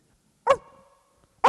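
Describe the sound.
A person mimics a small dog's bark: two sharp yips about a second apart, the first trailing into a short whiny tail, the second cut off at the end.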